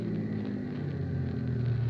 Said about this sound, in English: Bus just pulled in. Yeah, it's one of the regular stops here.